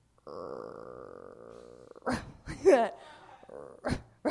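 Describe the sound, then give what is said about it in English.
A person vocally imitates a dog, starting with a drawn-out whining tone and breaking into a few short, rough bark-like yelps and grunts, fairly loud. “I was fucking this other dude and he started barking like a dog in bed.”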